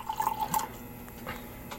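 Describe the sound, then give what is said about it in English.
A Sancerre wine from Trader Joe's pours into a glass for a first taste with a brief gurgling burble, then trails off into a few soft drips and splashes. No voices, just the liquid against quiet background. “So let's go ahead and pour our first taste of this and then jump right into Sancerre.”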